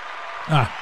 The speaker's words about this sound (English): Can I get a round of applause for that?